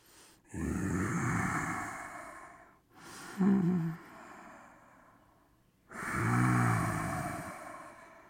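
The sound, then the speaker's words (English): Slow, audible ujjayi (victory or ocean) yoga breathing in the back of the throat with a soft, ocean-like hiss: a long breath in, a shorter middle breath, and another long breath, each separated by brief pauses. “That sound I'm making is the victory breath, and you would do that slowly in and out for about 5 seconds, for maybe 5 minutes, but it stimulates muscles that are controlled by, you guessed it, the vagus nerve.”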